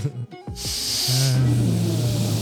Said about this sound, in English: I thought someone was sniffing in.